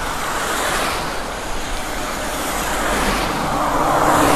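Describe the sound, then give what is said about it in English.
A car rolls by on a wet road on a rainy day along Veterans Memorial Parkway, its tires throwing a steady, loud hiss of spray that swells slightly as it nears at the end. No one speaks. “I don't complain about this part of the ride, though, even though on rainy days, like when the cars are coming by, it's like you got all that spray coming off the road.”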